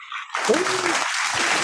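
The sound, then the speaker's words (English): An audience bursts into applause, a dense wash of many hands clapping that swells quickly and holds steady, with a few voices whooping and cheering through it, welcoming a saxophonist guest onto the show The Working Hour. “I love the claps.”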